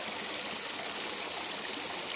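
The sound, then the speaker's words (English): Steady running water from a small stream in the Suffolk countryside, a continuous hiss and babble with no breaks, moderately loud and heard on its own without any voices. “Running water. I'm sat by a little stream out in the middle of the Suffolk countryside, out on a ride, and I am absolutely loving it.”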